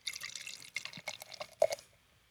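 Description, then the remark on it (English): An unfiltered West Coast style beer, 6.8 and brewed with Galaxy and Mosaic, is poured into a glass right at the microphone, a bright bubbly pour with splashes, trickles, irregular drips and fizzing, ending in a couple of louder sloshes before fading out. “You gonna pour me a little bit? Yes. Pour it on the microphone, there you go.”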